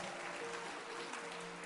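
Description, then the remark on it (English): Wedding guests clap for the bride after she says "I do" during the vows, a steady, dense patter of applause that holds evenly throughout, with a faint sustained hum underneath and no talking. “Clap your hands for her as well.”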